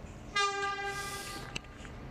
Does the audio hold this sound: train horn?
yes